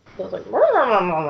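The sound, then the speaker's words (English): A dog grumbles: a couple of short low grunts, then a drawn-out, warbling, talky moan that rises and falls in pitch for about a second. “And your dog is agreeing with us, so I feel like...”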